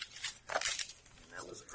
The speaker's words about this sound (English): That was a great shuffle. Like not quite 52 card pickup.